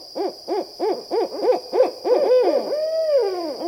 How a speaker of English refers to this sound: Their signature hooting sequence has been memorably described as "Who cooks for you? Who cooks for you all?" But this is just one of more than a dozen barred owl calls, ranging from a siren call to a wail to a wonderfully entertaining monkey call.